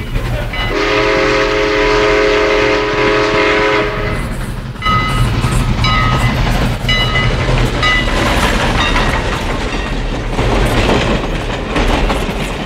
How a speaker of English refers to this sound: The train followed by plane.